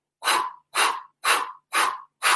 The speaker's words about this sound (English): This is a breathing exercise I created. It's fire breathing through your mouth, and then it's the other breath through the nose. Here's how it goes.